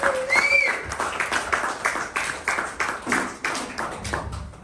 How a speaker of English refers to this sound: Everybody, let's give a warm round of applause